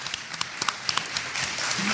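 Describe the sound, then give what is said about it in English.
An audience breaks into applause for the Circle City Ghostbusters, starting as scattered sharp claps that quickly thicken into a steady, dense wash of clapping at moderate loudness. “All right, how about a round of applause for the Circle City Ghostbusters?”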